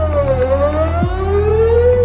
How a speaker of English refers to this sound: This is why we use low frequencies anytime we need a sound to travel as far as possible, like a foghorn. Or like a sweeping tornado siren.